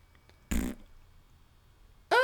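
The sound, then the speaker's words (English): A short, raspy fart-like blast made into a microphone, then after a pause a second louder, squeakier fart-like burst with a whistling tone that runs to the end. “I did not just fart into my mic, by the way.”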